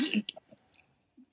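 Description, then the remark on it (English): Quiet crunching as a crunchy snack bar is bitten, a short crackly burst followed by a few soft, scattered chewing clicks and mouth sounds with pauses between them. “Like crunchy bar, yeah. There's ambiance going on there with that.”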